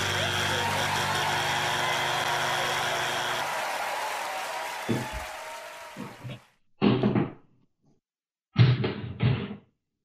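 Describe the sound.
A steady wash of background noise from a TV someone is watching, then a dull thud of a door being shut to keep the TV noise out, after which it goes quiet apart from two short bursts of voices.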